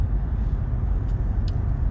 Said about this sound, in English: this fucking stupid ass fucking car that fucking didn't want to turn their shit off. They turn it on but turn it back on. And then it's like, okay, there you go, boom. You don't want to turn it off? Fine.